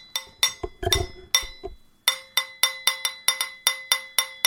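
A knife taps a wine glass in a ringing, bell-like melody: a few uneven strikes with soft thuds at first, then a steady run of about a dozen clear clinks, close and fairly loud.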